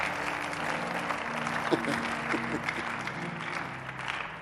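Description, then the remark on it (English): A crowd claps steadily throughout, a dense, continuous patter of many hands at moderate loudness, with a murmur of voices underneath and a few sharper claps standing out. “Look at them, clap it.”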